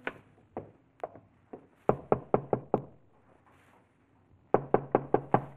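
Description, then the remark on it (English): Sharp knocking on the wooden front door of a lonely farmhouse, from its porch in the evening: a few scattered raps, then a fast run of five, a pause, and another burst of five firm knocks. “It took a few moments to rouse anyone, but finally the door opened, and there stood a woman.”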